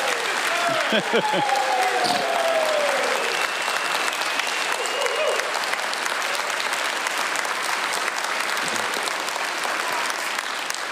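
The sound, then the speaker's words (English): An audience bursts into steady, sustained applause for the announcement of their next worship pastor, a dense wash of clapping that holds at an even level for the whole stretch, with a few brief voices and cheers mixed in near the start. “So I was actually going to pray for him and then tell you to clap, but you guys are so excited, you jumped on it.”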